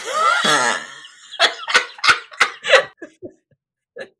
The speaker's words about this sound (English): Immediately the cough goes back.